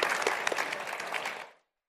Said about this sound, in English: So before we get started, how about we give them a round of applause? They agreed to be here today, and I could not be more appreciative.